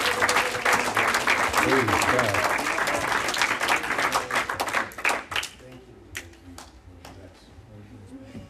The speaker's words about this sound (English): give the Lord a hand clap as he comes. Come on.